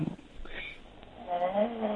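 Snoring from a caller who fell asleep while on hold for 22 minutes comes through a thin, muffled phone line: a rough, rumbling breath that fades, then swells again into a louder, buzzing drone toward the end.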